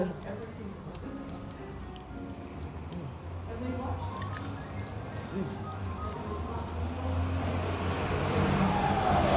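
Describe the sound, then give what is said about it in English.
A city bus rumbles past on a busy street in Ecuador, its low engine drone swelling steadily louder toward the end amid general traffic noise and faint background voices. “And another city bus.”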